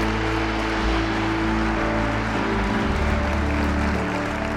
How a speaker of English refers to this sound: Why don't we give the Lord a good hand clap together?